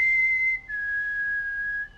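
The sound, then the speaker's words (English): A person whistles a clear two-note signal call: a steady high note, a brief break, then a longer, slightly lower held tone. Loud, with no talking. “And she starts to do the whistle.”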